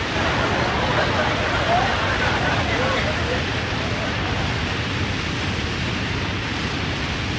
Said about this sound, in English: A perfectly good day ruined, right? Wrong. Not with Ronco's new shower and a briefcase.